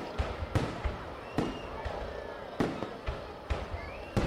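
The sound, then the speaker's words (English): Firecrackers set off to celebrate Tet, the Lunar New Year (Year of the Monkey, 1968), in a town in central Vietnam, pop in an irregular string of sharp cracks, roughly eight or nine bursts spaced unevenly over a few seconds, with a steady murmur of background noise underneath. “Tet, the Lunar New Year, had arrived, but the sound of firecrackers celebrating the Year of the Monkey in 1968 was replaced by gunfire and explosions.”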